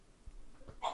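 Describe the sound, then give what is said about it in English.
A single quick sneeze bursts out near the end, short and sharp, after a second or so of quiet room noise with a couple of soft low thumps. “Bless you, whoever sneezed.”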